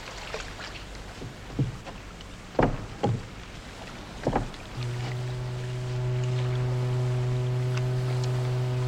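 A rowboat shifts on the water with a few soft wooden knocks and creaks as a person steps into it from the water, then a steady low hum sets in and continues to the end. No one speaks.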